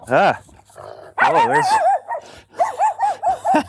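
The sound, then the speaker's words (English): A dog on a leash that has reached the sidewalk barks loudly at a passing pedestrian, first a single bark, then a rapid cluster, ending in a quick run of about five sharp, evenly spaced barks. “A dog just almost got my ankles there.”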